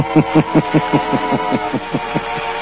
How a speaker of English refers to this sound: gets his car and drives to Monsieur Gallet's home